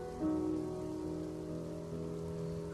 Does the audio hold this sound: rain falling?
yes